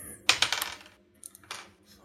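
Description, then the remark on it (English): Several dice clatter and skitter across a hard tabletop in a quick burst, rattling to a stop, followed by a second smaller tumble of clicks. “Oh, my dice are going everywhere.”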